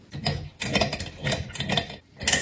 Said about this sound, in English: It is a phone charger that's supposed to charge my phone. That is a Stirling engine.